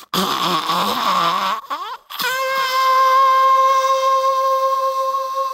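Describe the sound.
A voice buzzes in imitation of a gooch horn being blown, sounding like a kazoo: a wavering, sliding nasal buzz, a short break, then a long, steady, loud buzzing drone held to the end.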